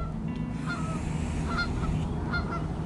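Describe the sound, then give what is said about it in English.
Geese honk repeatedly in short, nasal calls over a steady, low rumbling background, several honks overlapping at irregular intervals without any talking. “Nice honkers.”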